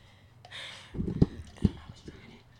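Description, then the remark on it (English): A cup of water drops with two dull knocks about half a second apart, after a soft rustling hiss, then faint sloshing and clatter trailing off; moderately quiet. “Oh yeah, I had dropped my water.”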